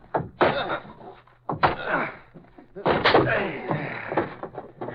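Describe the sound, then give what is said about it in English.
A closet door is battered down with three loud, heavy blows, each booming thud harder than the last, the final one a long crashing impact, amid muffled voices, with someone inside yelling for help. “In that closet. Break the door.”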